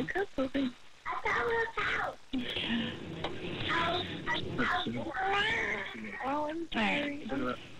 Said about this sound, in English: The baby's out already? The baby's out. Okay, I hear it crying. That's a good thing.